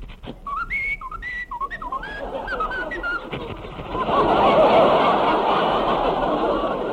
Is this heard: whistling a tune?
yes